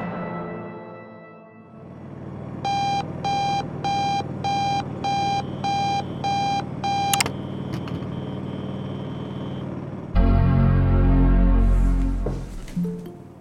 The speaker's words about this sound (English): Sorry, I overslept the alarm.